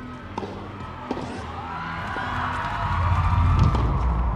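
A tennis crowd erupts as a player loses the first point of her match, the roar of cheering and shouting swelling steadily louder and reaching its peak near the end, with a few sharp thuds early on.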